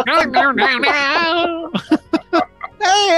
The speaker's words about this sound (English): He's coughing. Oh, God. I'm going to shut the fucking stream down. I'd rather shut the stream down than listen to this or subject coughing? People to this. Are you done coughing? No. Well, then go ahead and cough.